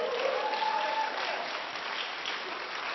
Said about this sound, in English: Hello, that deserved a bigger clap than that.